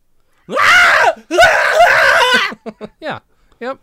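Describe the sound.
A person lets out two long, loud, warbling comedic imitation screams, followed by a few short breathy chuckles.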